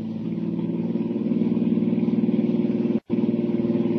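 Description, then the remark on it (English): A car engine roars steadily at high revs as the car chases another car toward a bridge, a loud, throbbing drone that holds its pitch, cuts out for a split second near the end, then resumes. “Bridge or no bridge, I'm going to catch that car.”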